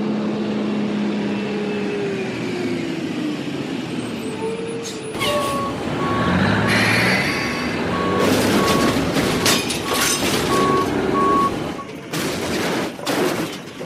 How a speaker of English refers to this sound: Ooh! Incoming truck! North on Main.